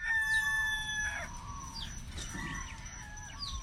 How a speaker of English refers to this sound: Now, for anyone who's been to Alaska can tell right away that those rooster sounds were not from Alaska, but probably from somewhere in the Hawaiian Islands.